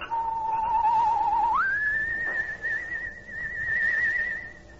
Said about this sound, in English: Suddenly, the shadowed outline of a human figure appears at the edge of a cypress grove behind the weather-beaten Horton house, and a soft, whistled signal rides the still night air.